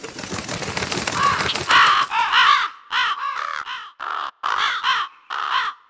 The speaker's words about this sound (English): Usually you just have the ruffly feather noise and then the crows squawking. Yeah, that's fine. I think there's two of them. It sounds like there's two of them. I don't know. They might be fake crows for all I know.